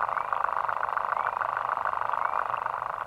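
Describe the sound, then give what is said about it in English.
A synthesized imitation of the underwater vibration of the lesser water boatman, a tiny water bug that makes the sound by vibrating its penis underwater at a very fast rate: a steady, dense, mid-pitched rasping buzz with a faint rising whistle-like chirp recurring about once a second, and no voices. “But this one tiny water bug, called in fact the lesser water boatman, makes a sound almost as loud as a whale by vibrating its penis underwater at a very fast rate.”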